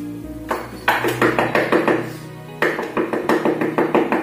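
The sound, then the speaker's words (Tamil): Maidservants knock on a princess's wooden door in two bursts of brisk knocking, each a rapid series of firm raps, separated by a short pause, with no voices. “பணிப்பெண்கள் கதவை தட்டின.”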